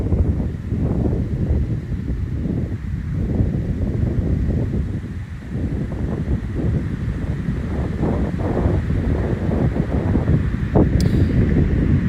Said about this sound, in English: Ooh, it's windy right now.